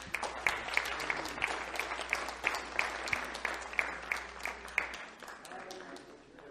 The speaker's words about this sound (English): All right, give another round of applause for the pastors.